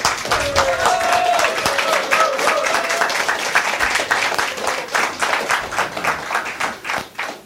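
A round of applause from an audience, dense overlapping claps that stay steady for several seconds, then thin out and turn more broken as they begin to fade.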